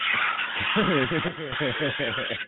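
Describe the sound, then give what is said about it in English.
A pressure washer sprays the rust on a car with a steady, loud hissing rush that runs unbroken for a couple of seconds, while a voice talks over the noise. “You're spraying his car, and it's really loud and obnoxious.”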